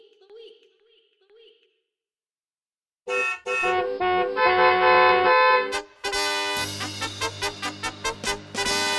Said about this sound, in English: The Ridiculous Driver of the Week. Honk, honk, honk.